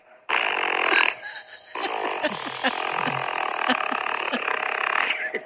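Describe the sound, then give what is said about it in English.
A voice imitates farting with loud, buzzy raspberry noises: a short sputter, a brief pause, then a long rattling stretch lasting several seconds before it cuts off. “if you're sitting next to somebody on the subway and they just start farting and they're farting like this, like.”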